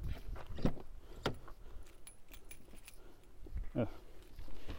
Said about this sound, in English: I'm getting my keys, which I can't remember where they are. But I actually do because muscle memory.